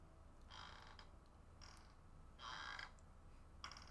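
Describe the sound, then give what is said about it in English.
A person imitates a creaking noise with their voice, making four short raspy, strained bursts in an uneven rhythm, moderately loud over a low background rumble. “I guess I try to make creaking noises.”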